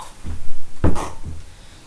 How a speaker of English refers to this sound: See, let's just close the door.